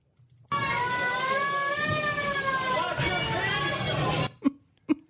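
A loud siren sound effect, the one played at Trader Sam's when someone orders the Krakatoa drink, wails steadily for about four seconds, its pitch gently rising and falling over a noisy background, then cuts off, followed by two short thumps.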